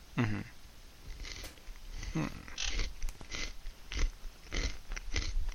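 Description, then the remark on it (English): Crunchy munching on Lucky Charms cereal, with repeated bursts of chewing in an irregular rhythm, loud, no talking. “Hold on, I'm munching on some cereal right now.”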